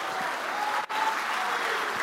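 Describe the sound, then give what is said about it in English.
An audience jumps to its feet and claps steadily in a dense, continuous wash of applause, with a faint cheer or shout of 'deliverance is on the way' blending in. The sound breaks off for a split second partway through. “Come on, jump to your feet and clap your hands and shout, deliverance is on the way.”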